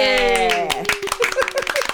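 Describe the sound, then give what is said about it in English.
A short burst of brisk, uneven hand clapping, mixed with a sustained voiced tone that slides down at the start and broken melodic notes underneath. “Well, a big round of applause.”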